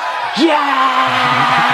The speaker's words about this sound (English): I put a really shitty little crowd noise under this. You're going to think there's hundreds of people back here.